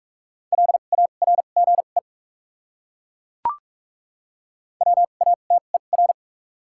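Rapid Morse code at about 45 words per minute with 2x character spacing, sending words from a list of the top 200 words: a steady mid-pitched tone keyed in quick dits and dahs, two short bursts separated by a pause with a single sharp click in between.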